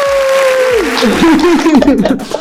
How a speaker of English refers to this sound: We're going to give you a round of applause.